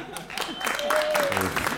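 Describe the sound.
A festival audience bursts into steady, dense applause lasting a couple of seconds, applauding to vote on which side of a contest is in the right, with a faint whistle or voices mixed into the clatter of many hands.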